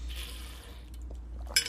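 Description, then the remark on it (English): Someone takes a quiet sip of water from a glass, a soft airy slurp, followed near the end by a bright clink as the glass is set down. No one speaks. “So, taking a drink of my water here.”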